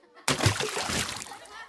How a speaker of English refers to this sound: Oops, did that one splash you? Just a little.